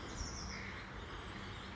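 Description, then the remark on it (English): Faint, high-pitched bird song, a few thin whistling phrases over a steady outdoor hush, with no one speaking. “And I actually want this meditation to be about bird song.”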